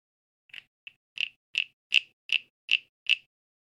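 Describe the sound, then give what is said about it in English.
A frog call device makes eight evenly spaced, raspy clicking chirps at a steady rhythm, bright and mid-high in pitch, growing louder after the first few, with no voices. “We got a rain whistle, and we got something that calls frogs.”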